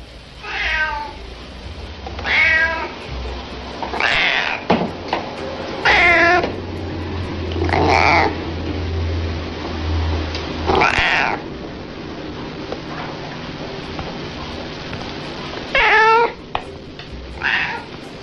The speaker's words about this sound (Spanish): esta mezcla entre maullido y ronroneo causa un estado de alguna manera de tranquilidad.